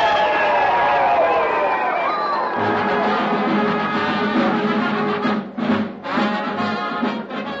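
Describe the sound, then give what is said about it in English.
A large crowd at a campus bonfire rally cheers and shouts in a loud, continuous roar of overlapping voices, sustained, briefly dipping near the end before swelling again. “A young man and an attractive girl stand on the outskirts of the crowd watching the festivities.”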